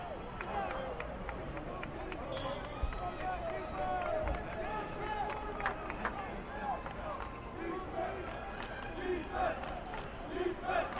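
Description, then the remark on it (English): A large crowd of Blue Raiders football fans, across the way, roars and chants in a steady, dense wash of cheering, cheering on their defense on third down in the second overtime, with shouts rising and falling over a continuous babble for the whole stretch. “You can hear the Blue Raiders cheering across the way, cheering on their defense.”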